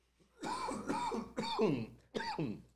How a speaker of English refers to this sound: I apologize for all the coughing, folks. I have a minor issue going on right now, but I'm getting better.